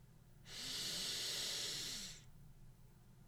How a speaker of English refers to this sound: Try this for your breathing. Inhale for a count of 3 seconds.